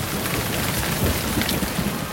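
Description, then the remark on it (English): Heavy rain pours down in a steady, dense hiss with a faint low rumble of thunder beneath it, continuous, with no voices. “These loincloths aren't exactly the most effective rain gear.”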